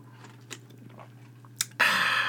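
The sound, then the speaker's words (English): Someone takes a drink of water: a couple of soft mouth clicks and a sharp tick, then a loud, sustained rush of crackly slurping noise over a steady low hum. No one speaks. “Let me take a hit off this water.”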